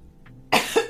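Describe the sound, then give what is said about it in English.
A sudden, harsh cough bursts out after a moment of near silence, a loud spasm with a second rough hack right behind it, as someone sputters after water went down the wrong way. “Listen, that water went down the wrong way.”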